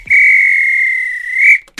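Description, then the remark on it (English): A referee's whistle sounds one long, loud, shrill blast lasting over a second, ending the match after extra time, then cuts off, followed by a brief burst of noise. “This is when the ref blew the whistle, because that's finished.”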